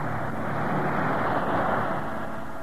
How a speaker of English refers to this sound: Temperature here, 79 in the air, 71 in the ocean. As the sound of these waves go out to you and to our own people who are away, we send our aloha and wish that you were with us here in Hawaii beside these waves.